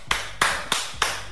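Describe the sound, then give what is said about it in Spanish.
People clap in a steady rhythmic beat, about five sharp, crisp claps spaced evenly apart, with no talking over them. “Mire, llegaron los que aplauden.”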